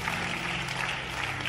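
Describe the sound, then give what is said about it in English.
A church audience gives a clap offering to Jesus, clapping together in a steady, dense wash of applause for a moment and a half, with a faint low tonal hum running underneath. “Come on, give a big clap offering to Jesus.”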